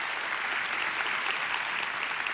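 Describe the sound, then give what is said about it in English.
An audience claps together to thank Jesus, a dense, steady wash of applause, many hands blending into a continuous crackling roar that holds an even loudness throughout, with no voices standing out. “I'm gonna join you in clapping.”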